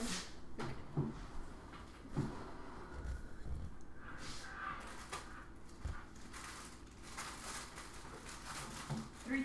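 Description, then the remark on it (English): A drawer slides and knocks amid a few scattered clunks and rustling, like someone rummaging through its contents. “Oh, they're in that drawer. If this drawer right here.”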